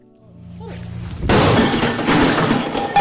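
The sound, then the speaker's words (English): Glass and objects shatter in a rage room at a business called Outrage in Kennesaw, Georgia, north of Atlanta, a loud crash breaking out after a quieter lead-in and ringing on as a sustained spray of smashing debris. “Georgia got its newest rage room last year. Also called smash rooms or anger rooms, these businesses offer safe spaces to physically vent.”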